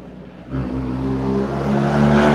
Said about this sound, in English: Yeah. That was a big truck.